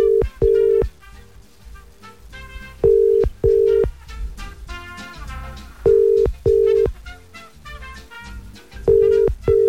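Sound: telephone dialing and ringing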